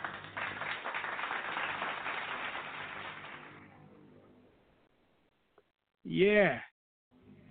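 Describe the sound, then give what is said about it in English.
A dense crowd of clapping hands fills the first few seconds, then fades away into quiet before a brief spoken word at the end. “Yeah, let me go ahead and throw some claps on it for y'all, man.”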